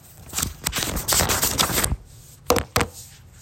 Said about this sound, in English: I don't even have on my, when I look at my paper, see if y'all can hear the paper.